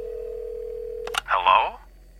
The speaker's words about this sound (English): He said after a few rings.